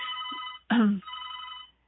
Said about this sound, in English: Seems too that I've already got phone calls coming through, so thank you to whoever's calling, and I really am grateful for that.